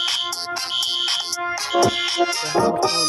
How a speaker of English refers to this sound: Now my phone is coming on, and I have to turn off the phone, and I'm not answering the phone.